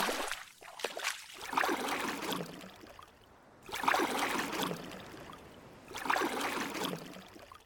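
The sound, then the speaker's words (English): A kayak paddle dips and pulls through sea water along a rocky coast at high tide in a steady rhythm, each stroke a rushing splash about every two seconds, with water trickling between strokes and no voices. “Instead, we paddle among new rocks we hadn't noticed before.”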